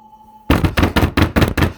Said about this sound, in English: Everyone is awoken by loud knocks.